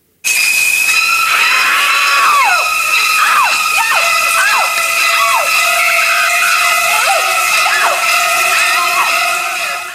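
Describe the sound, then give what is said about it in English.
Shrill, screeching violins stab over and over in sharp downward swoops above sustained high notes, loud and frantic for several seconds, like the shower-scene music from a horror film. “with that sounder going on, but it's Psycho”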